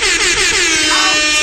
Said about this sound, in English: Because thanks to you guys, we hit 12,000 followers on IG. Can we get an air horn, please?